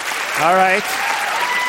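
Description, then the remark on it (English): A National Public Radio crowd at an evening debate claps steadily when asked to clap if they have used a dating app, a dense wash of applause throughout, with a brief whooping cheer rising above it early on. “And can you also clap loudly if you have used a dating app?”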